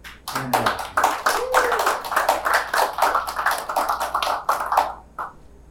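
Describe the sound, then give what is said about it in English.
An audience applauds, in a played news clip, as Trump invites the Clintons to stand: dense, steady clapping that holds at an even, fairly loud level for about five seconds, then quickly trails off to silence. “Trump invites the Clintons to stand for applause.”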